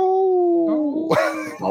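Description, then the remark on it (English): A wolf howls in a long, steady, slightly falling tone, then a rougher, higher yelping howl breaks in over it, loud, with no talking. “Got a couple wolves going on around here.”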